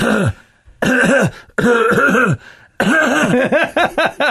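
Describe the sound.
Loud coughs and throat-clearing grunts delivered in a deliberate rhythm to imitate a song, with a few spaced bursts and then a quicker run of short coughs at the end.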